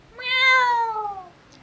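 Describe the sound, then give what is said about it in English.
A single drawn-out cat meow, clear, with a strongly pitched tone that slowly falls over about a second before trailing off into quiet, played to signal that a comedian's one minute of stage time is up. “They know that their minute's up when they hear the sound of a kitty.”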